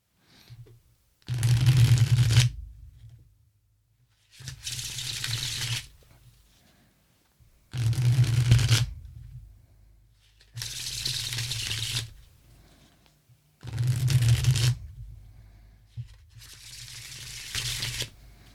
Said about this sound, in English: I hope the sound of that shuffle came out well, because these cards are like a tactile experience. The linen is just really nice.